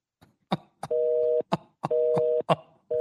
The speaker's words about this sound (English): You hit the fax machine button. What's this? Yeah, now it's busy. That's the fax machine.